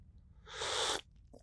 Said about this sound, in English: And a cup of tea. Let's take a sip of this tea.